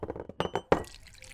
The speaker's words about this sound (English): I spilled coffee all over my cream-colored trousers, and now it's leaking into my brown socks. Ruined.